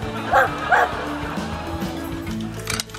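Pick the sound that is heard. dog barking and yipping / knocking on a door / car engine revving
dog barking and yipping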